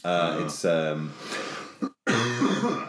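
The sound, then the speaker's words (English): A loud run of coughing and throat clearing, several rough voiced bursts in quick succession with a brief pause before a final heavy cough. “Excellent podcast material here, lots of coughing.”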